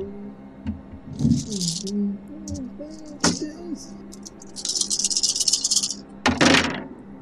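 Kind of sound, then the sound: household object, many dice being rolled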